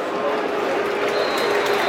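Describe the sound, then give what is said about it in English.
A stadium crowd applauds the players at the end of a football match that finishes in a 1-1 draw, a dense, steady wash of clapping and crowd noise that holds at an even loudness throughout, with indistinct voices blended into the roar. “Good applause for the players.”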